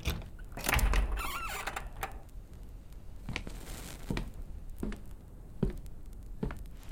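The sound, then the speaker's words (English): A door is handled and swung open: a loud clatter and creak near the start, then a series of short knocks and clicks spaced out over the following seconds, with no voices. “Another door. I hope it's locked.”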